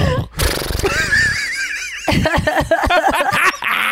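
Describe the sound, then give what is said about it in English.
A person imitates a horse whinny, a loud, wavering, trilling neigh that rises and shakes, followed by breathy snorting and sputtering sounds, performed vocally. “You've never done a horse?”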